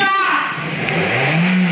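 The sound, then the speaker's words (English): A loud car engine revs, its roar dipping and then climbing in pitch toward the end of the short, continuous burst. “Oh, that's straight up a car.”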